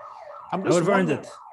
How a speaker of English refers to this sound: Give me a second that my alarm is going off.